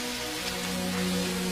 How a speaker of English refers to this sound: I wish the rain would stop just once. It can't rain all the time.